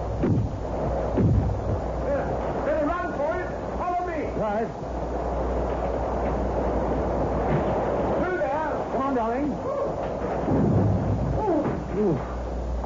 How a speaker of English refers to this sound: I mean, the storm's got worse than anything.